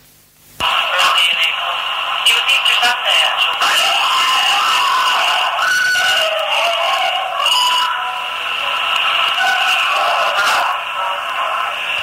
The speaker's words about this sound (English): and then it makes other people scream because of the sheer shock of it towards the end